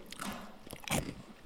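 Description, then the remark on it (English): Someone bites into a healthy crunchy snack, with a few short crisp crunches and a louder bite near the end, no talking over it. “He's all eating healthy over there.”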